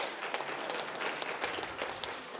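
A crowd applauds steadily, many hands clapping at once in a dense, continuous patter that holds at a moderate level throughout, with no voices standing out.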